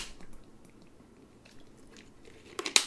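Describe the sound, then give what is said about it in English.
Someone drinks water, with soft, faint sipping and swallowing sounds over a quiet background, then a brief, sharper clatter-like burst right at the end. No one speaks. “Let me take a drink of water, because I got a lot of talking to do, and I did a lot of talking today.”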